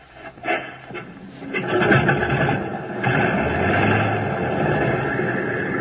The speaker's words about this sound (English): Select the number one engine on, sir. Well, here goes.